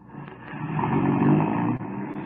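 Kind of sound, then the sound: vehicle, car engine driving off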